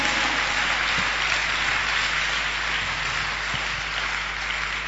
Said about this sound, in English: Why don't you clap for Jesus? Clap for Jesus.